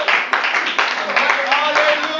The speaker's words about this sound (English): With all that clapping is about, what all the shouting is about, yes, what all the rest is about, what all the leaping is about, yes, praise the Lord.